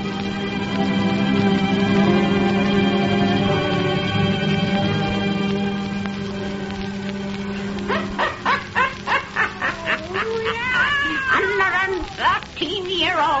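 Satan, the wise black cat of Old Nancy, the Witch of Salem, meows repeatedly, a quick run of short, wavering cries that come loud after several seconds of a steady, sustained droning tone.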